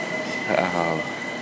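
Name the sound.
train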